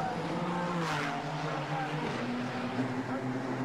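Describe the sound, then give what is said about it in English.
GT race car engines roar steadily and loudly, their pitch shifting as cars pass on the track while a Honda NSX goes down the inside of the Zent RCF to change position, with a dense, continuous mechanical drone throughout. “Juichi Nakayama is in the 31 car, which leads, as we see Honda NSX down the inside of that Zent RCF, and that is a change of position.”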